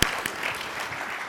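A crowd claps steadily, a dense, continuous patter of many hands with a sharp burst at the start, sustained and fairly loud throughout.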